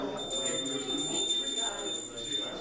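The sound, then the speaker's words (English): A hand bell rings continuously, its bright, high metallic tone sustained throughout, with indistinct voices murmuring underneath at a moderate level. “Oh yeah, bell ringing for Salvation Army?”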